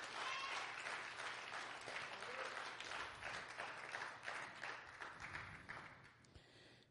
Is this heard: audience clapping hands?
yes